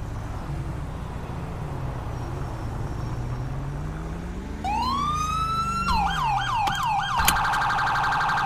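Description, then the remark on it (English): A police siren chirped to get a driver to move his car over gives a rising whoop, then a quick series of yelping chirps ending in a steady electronic tone, loud over a low rumbling engine drone. “I'm gonna bloop him and I'm gonna ask him to move his car over and follow me to move his car over.”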